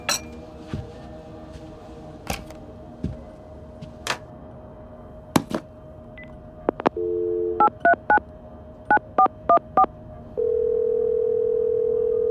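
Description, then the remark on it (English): On a borrowed phone, sharp clicks and handset handling give way to a short steady tone, then a quick run of beeping keypad dialing tones, followed by a sustained electronic phone tone, all clear with no talking. “Excuse me, do you have a phone?”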